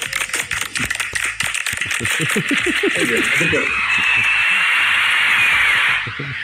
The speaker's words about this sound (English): Maybe the first time I've ever gotten applause. I like that.